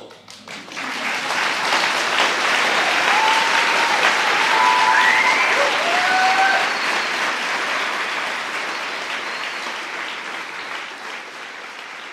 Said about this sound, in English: The darkness around them, but also the whiz-bang joy of explosion and the smell of the smoke, the oohs and the ahs, and now, from the people all around, the applause.